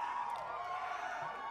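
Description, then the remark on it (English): A canned crowd cheering sound effect: a dense, steady wash of many voices roaring and whooping together, holding at an even level throughout with no single voice standing out. “Got a canned crowd.”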